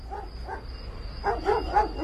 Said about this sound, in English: Can you please open the gate and tell your dogs to shut up? They'll wake up the baby.